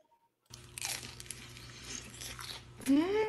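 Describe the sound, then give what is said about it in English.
Loud crunching from bites into a crispy fried veggie spring roll, a steady crackly chewing that carries on for a few seconds before a brief hummed voice near the end. “Panda's Express chicken egg roll. So crunchy, so good.”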